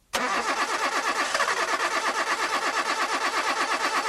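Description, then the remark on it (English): A car engine cranks over and over in a steady, rapid grinding rhythm for several seconds without catching, loud, with no voices. “Want to stop engine problems before they start?”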